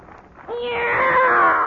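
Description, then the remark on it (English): A single drawn-out cat meow rises in after a brief quiet moment and holds steady, fairly loud, with a slightly whiny tone. “It's a cat, Miss Brooks.”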